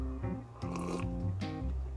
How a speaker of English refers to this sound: Sorry about my slurping, but the coffee is hot.